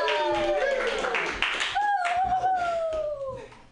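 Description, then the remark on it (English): An audience at the Joke Workshop comedy show claps steadily for a few seconds, the rapid hand claps mixed with voices cheering and whooping over the top before fading slightly at the end. “Keep clapping your hands together”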